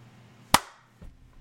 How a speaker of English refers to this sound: It's not too hard to reach up and clap, so.